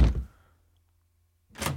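A door shuts with a heavy thunk that fades quickly into silence; after a brief pause, a second rougher knock or rattle follows. No one speaks.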